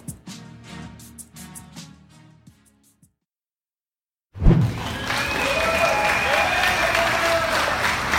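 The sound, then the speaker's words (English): After a short musical passage and a brief silence, a crowd bursts into loud, steady applause with whistles and scattered cheers, as Governor Holcomb places the first legal sports wager in Indiana. “Some applause last weekend as Governor Holcomb placed the first legal sports wager in Indiana.”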